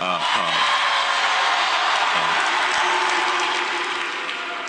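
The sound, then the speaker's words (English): A loud, sustained crowd roar at College Game Day, with cheering and applause blending into a dense wash of noise, holding steady for several seconds before easing slightly at the end. “Now, he didn't want to say that, but the reaction that he got from the crowd and the pop that he got from the crowd made him go off and say, I mean, I'm personally a fan.”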